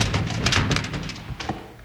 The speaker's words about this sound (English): All right, stay back, folks, while I kick in this door.